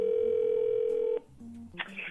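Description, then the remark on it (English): A steady, loud telephone dial tone on a phone line before a prank call drones for about a second before cutting off, followed by faint line noise and a brief electronic chirp. “It's this week's phone scam.”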